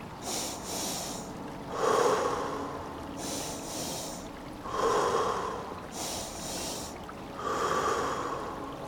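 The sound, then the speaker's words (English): Slow, deep breathing in a steady cycle at a slow tempo: a double inhale through the nose followed by a longer exhale through the mouth, repeated three times, clear with no talking. “So double inhale, nose, single exhale, mouth. The tempo is slow, not counting anything, just gearing the body up.”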